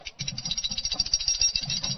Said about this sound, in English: So I'm going to ring that dinner bell for Jonah Arms to get this season started out right. Ready?